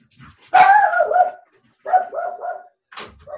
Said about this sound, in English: going to walk in the door, so Trixie may bark.